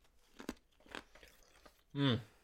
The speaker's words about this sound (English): Chewing on ice because I don't give a fuck.